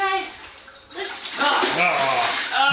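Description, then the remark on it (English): Vigorous water splashing and sloshing from a reptile doing a death roll, loud, surging after a brief lull, with a person's voice speaking over the commotion. “Trying to do his bloody death roll.”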